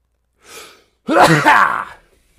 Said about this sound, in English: Like, I got to sneeze. Hang on.